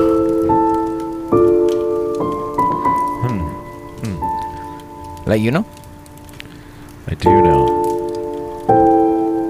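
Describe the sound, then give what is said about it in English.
A fire crackles loudly and steadily throughout, a dense bed of snapping, popping noise that keeps going while people talk over it. “You got a loud fire over there. Like it was loud.”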